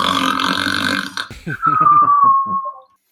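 A voice imitates the loud snoring of a dwarf inside a tower: a harsh, raspy rumble, then a rattling run of gurgling pulses under a thin whistle that slides downward before cutting off.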